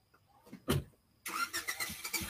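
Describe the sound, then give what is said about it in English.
A neighbour starts up her little Volkswagen Beetle (punch buggy). The engine cranks with a brief whirring burst, pauses, then catches and runs with a rough, pulsing rattle that stays fairly loud. “That's my neighbor starting up you know what I mean, her little punch buggy.”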